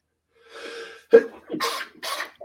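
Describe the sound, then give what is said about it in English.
A breathy intake leads into a sharp, loud sneeze, followed by a couple of rough, noisy bursts of breath as the person recovers. “Sneeze match. Oh, pardon me.”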